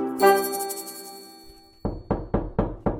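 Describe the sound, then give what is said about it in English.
A ringing tone fades out, then five firm, evenly spaced knocks sound on a front door, loud, with no voices. “Ah, that must be the doctor next door.”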